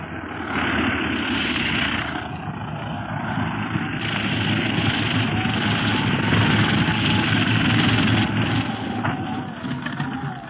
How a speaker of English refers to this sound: The plane is landing. We'd better step back.